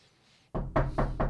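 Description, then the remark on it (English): Four firm knocks on a door in quick, steady succession, sounding solid after a brief moment of quiet. “Look, there's somebody at the door.”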